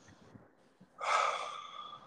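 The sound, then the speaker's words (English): A single deep, deliberate breath, fairly loud, a long airy rush of air that swells suddenly and then slowly trails off, preceded by a quiet moment. “Use your breath intentionally. Pay attention to breathing deeply.”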